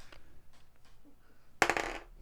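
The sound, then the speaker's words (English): A twenty-sided die, rolled for an insight check, clatters loudly onto a hard tabletop, a short rattling burst that quickly settles, preceded by a few faint, scattered taps. “Bort, give me an insight check. Okay. There's my 20 dice.”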